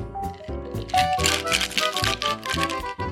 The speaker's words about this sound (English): Okay, that's it. All that is in the shaker. Now I'm going to add ice and give that a good shake.